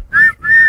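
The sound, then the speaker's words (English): Two loud, shrill whistle blasts in quick succession, the second held a little longer, with no talking. “Blow the whistle.”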